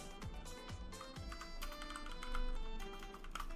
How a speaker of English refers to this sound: Oh, you're typing, Jason.